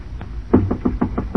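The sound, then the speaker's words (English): A series of about six firm knocks on a wooden compartment door, evenly spaced, ringing out alone after a brief quiet moment. “Hello, hello in there. Nobody home. Try the door.”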